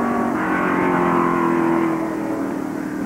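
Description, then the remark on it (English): A steady, loud engine drone holds a sustained high pitch from a Cobra race car running flat out in a race, leading the Grand Touring class, with no voices over it. “The Gurney Johnson Cobra is running beautifully. First in Grand Touring and staying there with no trouble.”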